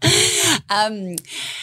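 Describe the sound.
Loud, heavy breathing: a few long, rasping breaths with a short pause between them, some carrying a slight voiced, whining tone.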